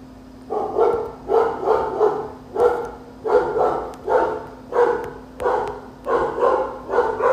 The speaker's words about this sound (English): Even the dog saying thank you.